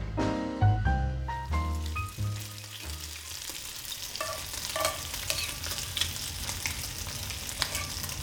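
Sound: bacon sizzling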